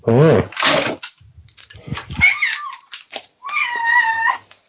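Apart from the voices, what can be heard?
cat meowing loudly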